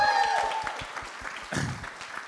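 An audience applauds as a leader is introduced, many hands clapping in a dense, steady patter at moderate loudness, with a thin high tone fading out in the first half-second and a brief swell of cheering near the end.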